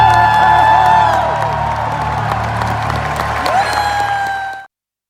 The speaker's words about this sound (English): Okay, that was very exciting. Sorry about some of the background cheering, but that's what you get because there was an audience there.